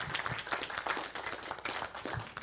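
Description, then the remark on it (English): An audience at a KMUW discussion event at Roxy's Downtown applauds the venue, many hands clapping in a dense, continuous patter at an even loudness throughout, with no voices standing out. “Let's have a round of applause for Roxy's.”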